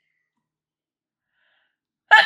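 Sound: sneeze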